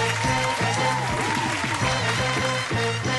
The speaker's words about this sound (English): Crowd noise. I hear it.